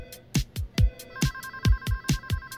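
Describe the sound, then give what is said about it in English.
Several telephones ring at once at a 911 emergency call center in Koreatown, in overlapping, rhythmic bursts. Steady tones are layered over sharp repeated strikes, loud, creating a busy chorus of ringing with no voices. “Emergency call center, Koreatown. 911, what's your emergency?”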